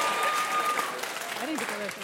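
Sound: audience clapping hands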